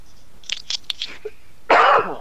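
coughing fit

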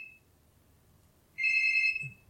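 telephone ringing

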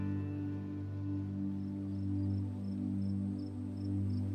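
crickets chirping

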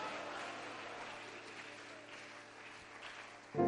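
audience clapping hands

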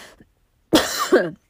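sneeze or cough

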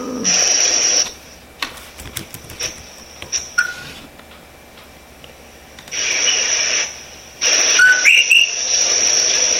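coqui frogs calling

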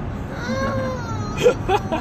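young child crying

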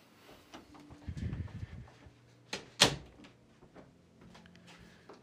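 door being closed

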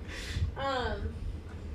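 sneeze

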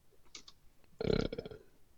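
burp

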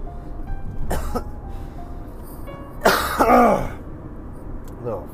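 throat clearing and coughing

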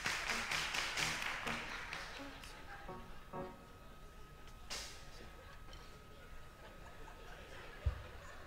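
audience clapping hands

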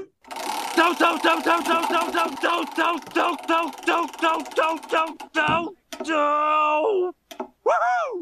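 spinning prize wheel clicking

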